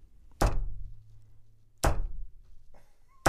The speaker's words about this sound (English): Knock once for yes, two for no, three for pubes.